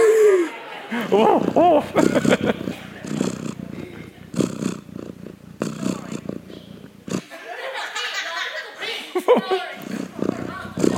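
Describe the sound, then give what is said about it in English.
A person vocally imitates a lawnmower, a rumbling, fluttering drone resembling a cat's purr that rises and falls in bursts over several seconds, with brief pauses between. “Oh, did anybody get the purring cat?”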